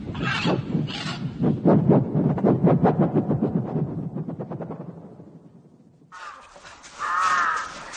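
A large bird caws loudly in a rapid, raspy series that gradually fades, then lets out another harsh, drawn-out call after a brief pause. No one speaks.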